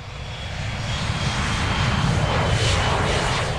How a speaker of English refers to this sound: That's an American Airlines Embraer 175 heading to Miami. Flight time is about an hour and 15 minutes, much shorter than a coach bus trip.